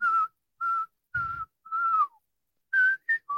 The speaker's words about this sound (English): Yeah, that's a very hard one to hum. It's hard to hum. Okay, I'll try a whistle.